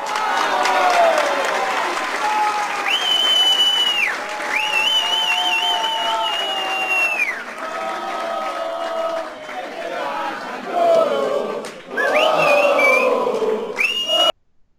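A large crowd at a political rally in Argentina cheers and applauds loudly and without pause, with long shrill whistles repeatedly rising above the roar before it cuts off abruptly.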